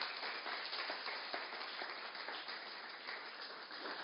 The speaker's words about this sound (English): Well done. Let's give all our hat wearers a clap.